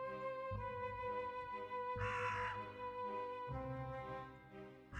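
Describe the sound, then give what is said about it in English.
A crow caws a few times, three harsh, spaced-out calls with the middle one loudest, over a steady droning tonal background. No one speaks. “All right, that quiet crow sound that you might have heard is...”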